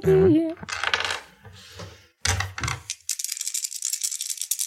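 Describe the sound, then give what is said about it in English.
Dice clatter across a hard surface in several sharp bursts during a tabletop game, then settle into a steady rattling as they are shaken. A brief wavering vocal sound comes at the start. “And these are dice, right?”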